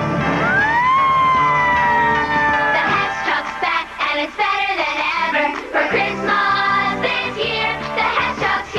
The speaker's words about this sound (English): A truck of heroic proportions. Hess Fire Truck 2000, built for action. Cool flashing lights, a real horn and siren, and a giant ladder that goes up, up, and away.